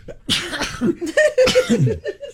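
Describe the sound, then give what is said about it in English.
A few sharp, loud sneezes, with voiced gasping and breathy sounds between the bursts and no speech. “Sturgis is so exciting that it's given me sneezes.”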